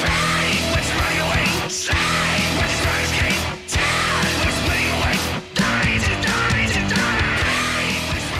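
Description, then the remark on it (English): A loud, dense rock song with high, gritty falsetto screams over a full band, broken by two brief near-silent breaks before the music crashes back in. “That high falsetto thing where you add the grit.”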